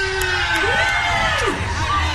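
A crowd cheers and applauds steadily for a couple of seconds, with rising and falling whoops and shouts riding over dense, continuous clapping noise.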